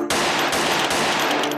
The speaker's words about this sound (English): I hear the first gunshot, but not the second or third.